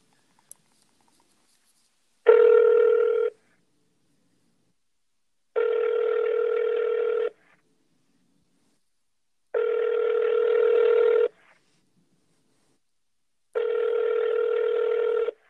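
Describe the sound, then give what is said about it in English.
Four evenly spaced ringback tones of an outgoing telephone call to Blockbuster, each a steady buzzing ring lasting over a second, separated by silent pauses, with no one speaking. “We're going to call Blockbuster. Okay. And we're gonna see how this phone call goes.”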